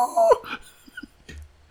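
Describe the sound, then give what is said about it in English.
A sudden loud, high-pitched shout overloads the microphone, producing a harsh, distorted burst at the start before dropping to quiet background with faint murmurs. “Dude, I just clipped your mic out.”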